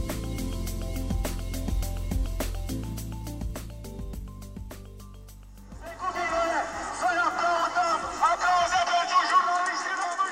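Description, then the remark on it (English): A music bed with steady tones and percussive hits fades out, then a loud crowd of many protesting Romanians shouts and chants together for the last few seconds, applauding the journalists who uncovered a story and chanting the last name of famous journalist Catalin Tolentan. “The protesting Romanians are shouting applause for the journalists who uncovered this story, along with the last name of a famous journalist, Catalin Tolentan.”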